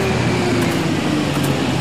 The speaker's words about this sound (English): I hope this truck isn't another joke.